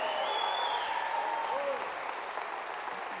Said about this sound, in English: Would you give the King of Kings and the Lord of Lords, Jesus Christ, a hand clap of praise?